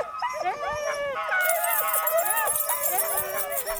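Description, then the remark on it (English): Many sled dogs, getting fired up, howl and whimper together in an excited, overlapping chorus of rising and falling cries, loud, with yips mixed in and no pauses. “You can see in the dogs now, they're starting to get fired up a little bit.”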